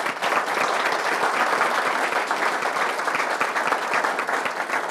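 An audience thanking the speakers after a presentation claps steadily for about five seconds, a dense, sustained patter of applause at even loudness with no voices standing out.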